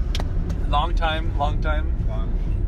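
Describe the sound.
Steady low rumble of road noise inside a moving car fills the whole stretch, with a voice speaking briefly over it partway through.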